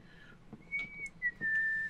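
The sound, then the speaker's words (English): A person whistles a short tune of a few sustained, clear notes with slight pitch slides, fairly soft against a faint background hum, with no talking. “It's just like, you know, whistling a tune.”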